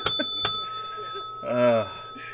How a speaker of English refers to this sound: Bring the bell